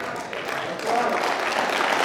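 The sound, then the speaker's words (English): An audience breaks into sustained applause, a dense wash of many hands clapping at once that swells a little louder partway through and holds steady to the end. “You can clap on that.”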